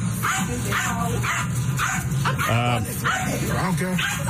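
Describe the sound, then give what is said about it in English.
A dog barks and yips repeatedly in quick bursts, loud, with voices and a steady background hum underneath. “I would have gone after the dog.”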